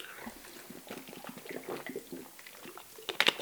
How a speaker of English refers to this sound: I'll just have a quick drink before the next one goes on. 2 seconds.